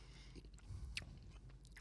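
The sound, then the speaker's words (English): Chewing of a hard, crunchy blueberry-flavored snack, with a few sharp crunches and bites over steady low mouth noise, no speech. “Why is there always one that's really, really hard mine, to chew?”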